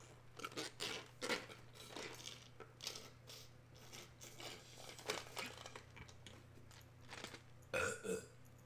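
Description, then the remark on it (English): Someone drinks root beer in a series of short gulps and slurps, with crinkly rustles of the container and a few throaty, burp-like sounds over a steady low hum. No one speaks. “As I freaking drink the rest of my root beer.”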